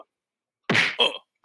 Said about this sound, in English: Oh, wait. We have something for that, don't we? Yeah, he's going to slap.